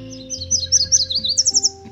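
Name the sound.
yellow warbler song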